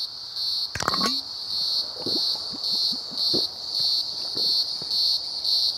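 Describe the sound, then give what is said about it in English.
Male cicadas drone loudly and steadily in hot weather, their high buzzing chorus swelling and fading in a regular pulsing rhythm, with a few soft thumps and rustles underneath. “These cicadas are so noisy. How can they keep singing when it's so hot?”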